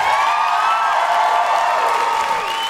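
Loud, sustained applause and cheering from a live show audience for the performers, a dense steady wash of clapping with high whoops and shouts rising above it, continuous for the whole stretch without pauses.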